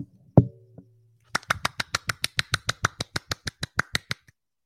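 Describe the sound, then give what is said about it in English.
After a single thump, a fast, steady run of about seventeen crisp slapping claps follows, each sharp and evenly spaced, made by a person clapping with one hand, with no voices. “I was clapping with one hand.”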